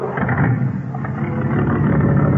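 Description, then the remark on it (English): A black car's engine rumbles steadily as it is sent through, a low, continuous motor drone that holds at a fairly loud level for a couple of seconds with no voices over it. “Next car, Ed.”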